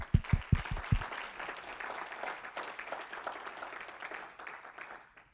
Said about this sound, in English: Let's clap our hands.